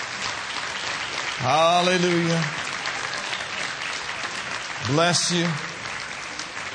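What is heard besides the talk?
audience applauding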